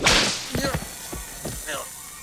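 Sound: whip crack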